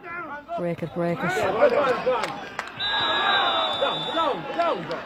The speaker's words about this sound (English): Come on, ref. Hearing the referee being shouted at down there. Break it, John.